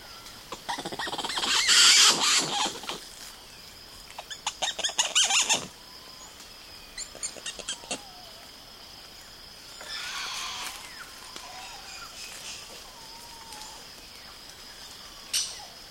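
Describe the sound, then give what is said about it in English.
Woolly spider monkeys living near the Caratinga Biological Station in the Atlantic Forest of Brazil call with high, squealing chirps in bursts, some loud, others fainter, over a steady hum of insects and ambient background; a day of their calls recorded and sonically condensed by Douglas Quinn. “Douglas Quinn recorded and then sonically condensed a day in the life of a group of woolly spider monkeys who live near the Caratinga Biological Station in the Atlantic Forest of Brazil.”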